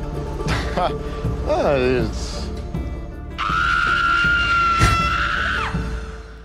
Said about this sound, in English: Just like a disembodied scream.